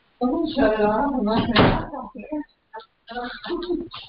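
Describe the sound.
A door bumps shut with a short, sharp knock partway through, surrounded by talking that pauses briefly before picking back up.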